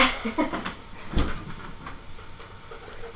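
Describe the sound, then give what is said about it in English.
A front door is opened, with a few light rattles and clicks building to one sharp thud about a second in, then a soft background hiss as it settles. “And going to the front door.”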